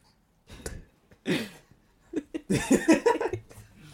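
A producer gives a few harsh, breathy coughs, first two separate bursts and then a rougher cluster of coughing fits, moderately loud with no talking.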